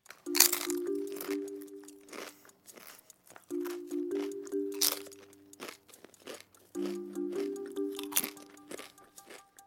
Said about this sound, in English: That is the unmistakable sound of crunching chips.